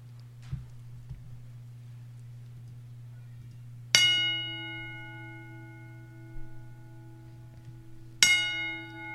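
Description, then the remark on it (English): A single bell is struck twice, about four seconds apart, as part of a ten bell salute for Matt Sinister, each clear metallic ring lingering and slowly fading over a steady low background hum, with no talking. “10 bell salute for Matt Sinister.”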